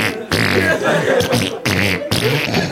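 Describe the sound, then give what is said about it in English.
Three loud, buzzy fart noises in a row, each a sputtering low rasp, the first longest, likely blown by a mouth in imitation rather than the real thing. “So he said I had to cut out three of those farts.”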